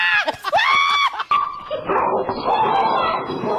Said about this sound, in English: Oh, the dog's going nuts.